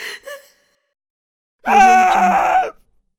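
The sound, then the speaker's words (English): A woman in a neighborhood lets out a single loud, anguished wailing scream lasting about a second, preceded by a brief faint breathy gasp and a short pause of silence. “That's when we heard that screams are coming from Rishabh and Alina's neighborhood.”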